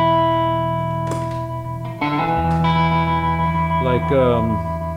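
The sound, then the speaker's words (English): Sustained electric guitar notes ring out through an amp with a pulsing, wavering tremolo effect, loud, with a few chord changes and a warbling bend near the end. “So, let's hear that vibrato too, or the tremolo.”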